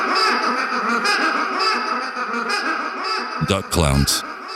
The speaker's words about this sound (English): I recorded some duck sounds, but it was hundreds of ducks in front of this man's house. And he would feed the ducks. There were like 50-plus mallard ducks